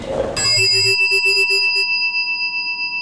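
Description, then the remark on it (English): A single meditation chime is struck, then rings on with a bright, clear metallic tone and shimmering high overtones that slowly fade over a few seconds. No one speaks. “Allow the sound of the chime to call you to presence.”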